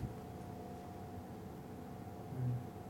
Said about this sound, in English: So he's hearing pauses in the static, which is like usually the sound someone's trying to come through.